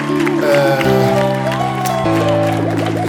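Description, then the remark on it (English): A replayed applause sound effect with music: sustained, loud music with steady chords plays alongside a broad wash of clapping, like a crowd applauding over a show theme, with no one speaking. “Or actually, just do the applause and the music again.”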